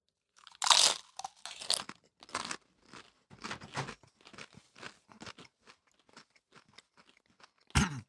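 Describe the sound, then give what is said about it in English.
Loud, sharp crunches of someone biting into heavily seasoned chips, followed by a run of steadily fading chewing crunches in an irregular rhythm, with one last loud crunch at the end; no talking. “But all right, let's cheers. Touch chips.”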